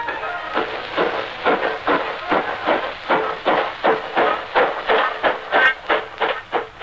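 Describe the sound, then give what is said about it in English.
The Folkestone boat train of the South Eastern Railway, in 1855, runs along the tracks with a steady, rhythmic chugging, each heavy puff of sound repeating a few times per second, continuous, with no voices. “At the railway station, they were placed in safes that were considered impregnable and transferred to the Folkestone boat train under care of the guard.”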